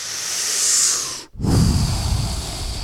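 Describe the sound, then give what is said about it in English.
A long, exaggerated inhale through the nose, loud, followed by a brief pause and then a breathy, airy exhale. No talking. “When I do walk into the door, I do a big inhale.”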